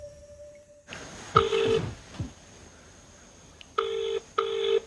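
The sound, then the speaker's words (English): A telephone line with a brief steady tone and a burst of dialing-like beeps as someone calls home, followed by two evenly spaced ringing bursts, fairly loud, with no one speaking. “Now I've got to find a phone to call home.”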